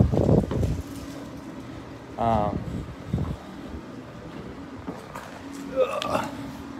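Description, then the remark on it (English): Steady outdoor wind rushes and rumbles throughout at a fairly constant level, while a man's voice speaks in short bursts over it. “It might not be as windy.”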